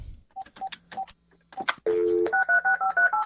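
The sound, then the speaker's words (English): A steady dial tone cuts in, followed by a quick run of about eight touch-tone beeps from a landline keypad, each short and evenly spaced, sounding clear after some faint handling noise, as a caller switches from a cell phone to a landline. “Yes, I'm was losing you on my cell phone. I'm trying on a landline now.”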